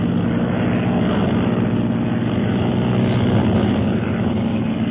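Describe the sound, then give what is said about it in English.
A steady, loud propeller-plane engine drones as the plane climbs to a safer altitude, a dense rumbling hum that holds constant throughout with no voices. “Yes, and I shall give the signal to commence firing while we climb to a safer altitude.”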